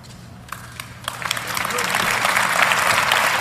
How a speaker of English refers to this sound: Everybody's applauding, but nobody knows what that means.